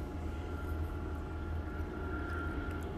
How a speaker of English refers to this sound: Yeah, there's the helicopter again. Very curious.